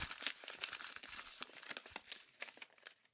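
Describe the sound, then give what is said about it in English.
Folded wrapping paper being opened out with a dense run of sharp crinkles and crackles, close up and fairly quiet, continuing unevenly for a few seconds with no voices. “He got up, jumped with feline grace into my lap, and proceeded to unfold himself.”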